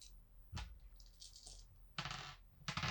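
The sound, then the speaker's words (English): Dice clatter and tumble across a hard tabletop in several bursts, rolled for a strength and brawl check that scores four successes, each rattling roll loud, with a longer rolling spill near the end and no one speaking. “Get rid of those dice. Those dice. That's four successes.”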